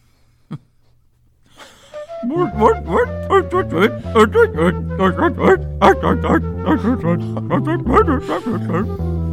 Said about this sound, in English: I'm pretty sure that's not what manatees sound like. They're not manatees. I'm going out on a limb. Sea lions.